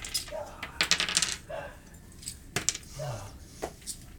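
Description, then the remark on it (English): Dice rattle and clatter across a hard tabletop in a few quick bursts of sharp clicks as players roll for coins in a game, with faint voices murmuring between the rolls. “You didn't roll a six”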